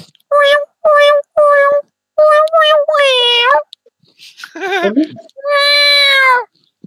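A tired cat named Puma meows over and over while fireworks are going off, a quick run of short, loud meows followed by longer, drawn-out, wavering cries, with brief pauses between them.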